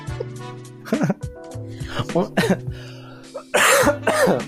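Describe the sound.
Several rough coughs and throat-clearing bursts from a person with the flu, fairly loud, punctuated between stretches of a voice, with a harsher, noisier cough cluster near the end.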